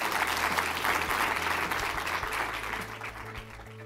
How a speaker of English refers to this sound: Another round of applause for Sean Parker. Thank you.